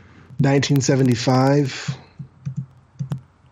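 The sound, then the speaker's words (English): A voice sounds briefly, then scattered keyboard typing follows: a handful of light, irregular clicks, fairly quiet, as someone quickly types the name Gerber into Mike's Amazing World. “I do have, you know, Mike's Amazing World here next to me, which I'm quickly typing Gerber into.”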